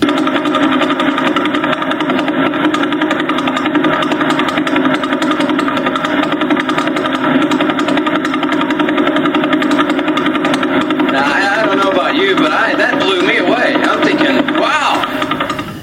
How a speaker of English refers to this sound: And this is what this guy does 24/7, day and night, 365 days a year. This is what, from 1,000 light years away, the Vela Pulsar sounds like right now. This is it. Listen to this.